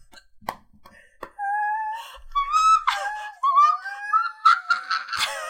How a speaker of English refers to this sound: Just high-pitched screaming for the rest of the podcast.